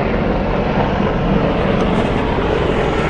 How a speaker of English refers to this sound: There's a helicopter above us is patrolling because missiles have been hit.